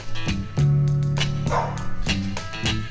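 Dogs bark excitedly in quick, overlapping bursts, about eight sharp barks in three seconds, loud with no pause between them.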